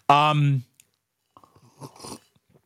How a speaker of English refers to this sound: That's the sip of the day. It's official. Write it down.